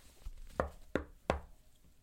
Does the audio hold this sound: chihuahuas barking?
no